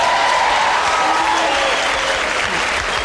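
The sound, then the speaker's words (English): A live comedy-show audience claps steadily for a few seconds in answer to a comedian asking who likes cats better than dogs, a dense, loud wash of many hands with a faint murmur of the crowd underneath. “How many people like cats better than dogs? By a round of applause.”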